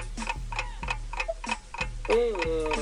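A 30-second countdown clock ticks steadily and briskly, each sharp tick evenly spaced, over a low sustained tone with a brief rising tonal swoop near the end.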